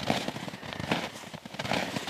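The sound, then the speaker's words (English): Footsteps crunching through soft, crunchy snow, three slow, evenly spaced steps with a gritty crackle on each footfall, fairly quiet, with no voices. “And there's icy snow and soft, crunchy snow.”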